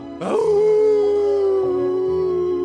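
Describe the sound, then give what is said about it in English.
An old hound dog lets out one long, sustained howl that starts suddenly and holds a steady, mournful tone for a couple of seconds, loud, with no talking. “On his way, he saw an old hound dog sitting in the shade of a tree alongside the road.”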